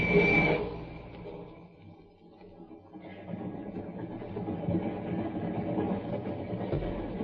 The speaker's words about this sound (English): train was a few minutes out of Glendale. I hobbled back to the observation platform.